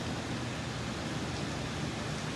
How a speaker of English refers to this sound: Just going to come over here to open up the window of my hotel. You can hear the rain. I don't know if you can see the rain.